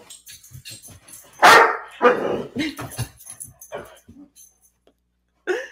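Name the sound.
dogs barking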